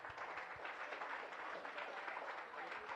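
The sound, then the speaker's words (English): Steady applause from a crowd at a Rotary club meeting after a speaker is presented with an award, a dense continuous patter of many hands clapping at an even loudness throughout, with no single voice standing out. “So applause and smile.”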